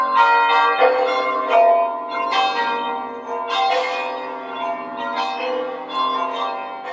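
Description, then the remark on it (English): Six church bells peal together in a full, overlapping clamor, their strikes tumbling over one another in a steady, joyful rhythm that rings loud and bright throughout, with no voices. “it takes minutes and minutes that one bell is sounding, and then to have such a it's such a joyful sound when all six are going at once, and it's like, oh, it's our prayer that he's kind of echoing what's happening in heaven.”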